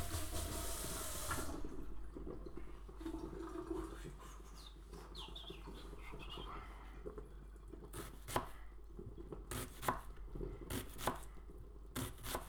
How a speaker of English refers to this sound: Okay, I'm trying to be quick cutting the onion